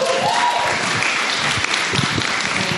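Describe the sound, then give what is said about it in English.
An audience at a storytelling event applauds a storyteller steadily, a dense wash of many hands clapping at an even, fairly loud level throughout, with a few faint low vocal sounds beneath. “So thank you to all our storytellers, but again, clap”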